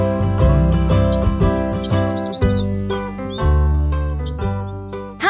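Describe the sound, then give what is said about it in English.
Birds chirp in quick, scattered bursts, high and bright, layered over a steady, fairly loud musical backing with a low pulsing beat. No one speaks. “Crazy birds!”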